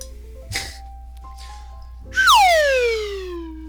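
A slide whistle lets out a loud, bright tone that swoops steadily downward in pitch over about a second and a half, fading as it falls, after a couple of soft clunks.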